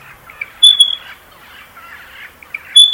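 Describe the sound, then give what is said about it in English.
A black-faced cuckoo-shrike calls in Victoria, Australia, in two short, bright, rolling bursts separated by a pause, over a soft wash of other birds chattering in the background. “Did you hear the black-faced cuckoo shrike?”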